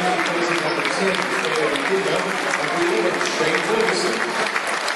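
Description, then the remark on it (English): Sustained, even applause from a large stadium crowd at a Millwall football match as a player is substituted off in the 81st minute, a dense wash of clapping that holds steady for several seconds with a faint murmur of voices underneath. “Good applause for him.”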